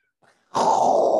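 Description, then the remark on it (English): A cat lets out a loud, drawn-out, throaty vocalization, preceded by a faint brief murmur; the sound continues steadily until it cuts off at the end. “Hi, kitty.”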